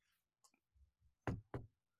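A light knock on a door: a few soft, muffled taps followed by two sharper knocks in quick succession on what sounds like a wooden door, with no voices.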